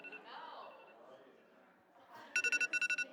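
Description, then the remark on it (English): An iPhone alarm tone starts abruptly after some low murmuring voices: bright, high electronic beeps pulsing quickly in two bursts of four, loud and insistent. “He said, I want an alarm that makes me angry because I want to wake up.”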